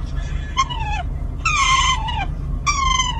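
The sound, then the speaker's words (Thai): An otter, while being scratched, gives three shrill, squealing calls in quick succession, each a harmonic whine that slides downward in pitch. The calls are fairly loud over a low background rumble. “เฮ้ย นาคใช่ไหม”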